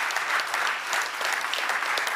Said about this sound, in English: Come on, if we're gonna clap, let's just all clap together out there.